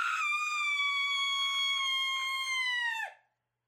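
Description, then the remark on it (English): A single loud, piercing scream in an inn, held at a steady high pitch for about three seconds before it dips sharply and breaks off into silence. “A short time later, screams fill the inn.”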